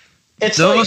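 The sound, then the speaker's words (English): A single loud sneeze bursts out after a brief quiet moment, a harsh, breathy blast with a voiced edge that lasts about half a second. “Oh, excuse me. Bless you.”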